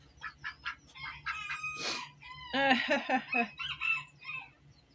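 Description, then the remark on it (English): Several ducks squawk and chatter in quick, overlapping bursts as they try to eat a piece of something, with a few longer raspy calls in the middle and no one talking. “Ducks trying to eat a piece of... No, ducks can't eat that.”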